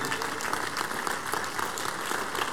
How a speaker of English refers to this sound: Stand to your feet, please. Give the Lord the biggest clap of praise, everybody.